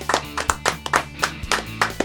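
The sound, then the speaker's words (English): A short burst of hand clapping, several sharp claps in a quick, slightly uneven rhythm, moderately loud, with a low steady hum underneath and no clear speech. “We'll appreciate clap it out.”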